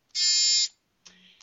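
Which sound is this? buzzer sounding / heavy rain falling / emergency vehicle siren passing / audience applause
buzzer sounding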